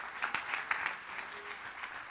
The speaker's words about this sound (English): All other gods are lowercase g, because there's only one true God. Clap your hands like you believe it in your soul tonight.